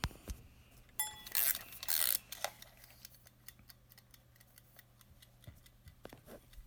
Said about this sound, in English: Let's wind up the timer.